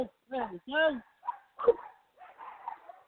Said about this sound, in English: You know, it sounds like we're running a sort of a dog fighting ring here, but we're not, I promise you.